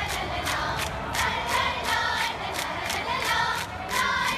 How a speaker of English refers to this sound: So no matter what music is going on and what else is going on in the stadium, this is what's going on with the cheer squad. And this is, they're screaming this. There's 300 of them.